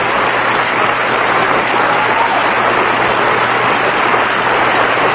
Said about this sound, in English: And it's one of those things that if I had a board member who was paying attention, and he, you know, would play an applause button.